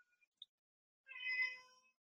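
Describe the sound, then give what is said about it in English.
A male cat lets out one drawn-out meow, fairly quiet, after a couple of faint short chirps. No one speaks. “Do you hear the cat? He's going to do this the whole show, just so you know.”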